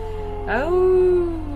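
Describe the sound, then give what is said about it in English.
A person howls like a dog: one drawn-out vocal tone that swoops upward and holds steady, clear, over a faint steady hum. “Oh, woof woof.”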